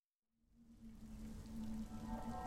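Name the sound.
light rain falling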